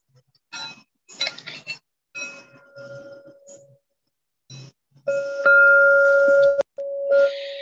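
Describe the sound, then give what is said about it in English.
A meditation bell is struck several times, first with short metallic clinks, then with loud, sustained ringing tones that hum and slowly fade, with no talking. “I hear three bells, one just a moment, one at halfway through, and then one an hour from now.”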